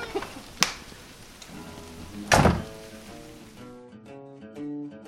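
Steady rain falls with a soft, even hiss, broken by a couple of sharp thumps, then cuts off abruptly after a few seconds, leaving gentle musical tones behind.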